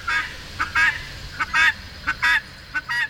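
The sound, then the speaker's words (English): A guinea fowl hen under the bushes in a neighbor's yard calls repeatedly in harsh, rhythmic two-part squawks, about eight bursts in quick succession, loud over a low outdoor rumble. “Finally, we spot the elusive guinea in a neighbor's yard.”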